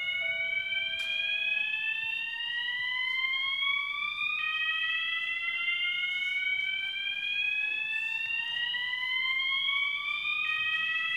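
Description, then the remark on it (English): A fire alarm blares continuously, its shrill electronic tone gliding slowly upward and then resetting to sweep up again, loud and steady throughout with no voices; it is a false alarm. “We'll see if that continues or is a false alarm.”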